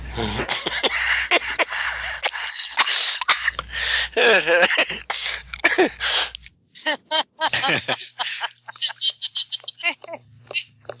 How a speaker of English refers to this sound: Oh, I just had a coughing fit.